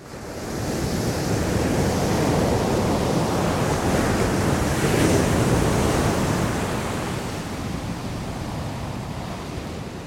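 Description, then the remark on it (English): Ocean surf rolls in below steep cliffs with a steady, broad wash of roaring water, swelling to a fuller crash midway before easing back, with a gusty wind-like hiss throughout and no voices. “High above the ocean, a man with a backpack scales the steep cliffs outside of Jack's garage.”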